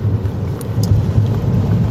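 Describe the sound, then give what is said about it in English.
A steady, loud low rumble of road and engine noise inside a moving car, continuous throughout, with a couple of faint brief ticks and no voices. “The best time, in fact, pretty much the only time I can do it is when I'm in the car.”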